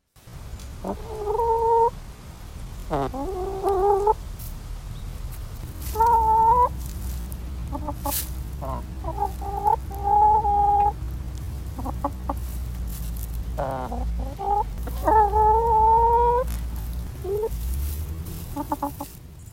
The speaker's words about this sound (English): Even though we only have hens, they can be pretty loud. Here's a few seconds of the sound my chickens make.